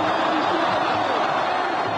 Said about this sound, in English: The roar of the crowd says it all. After 18 days, President Hosni Mubarak has resigned.